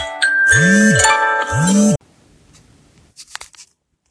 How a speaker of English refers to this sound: Wait a second, my phone is ringing.